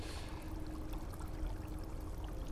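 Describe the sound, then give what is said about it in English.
Steady, low rumble of a river meandering slowly across a cavern floor, with scattered soft trickles and drips over a broad wash of sound, fairly quiet and unbroken throughout. “The river, whereas before it was rushing fast, cutting through the rock, is now meandering slowly across the cavern floor.”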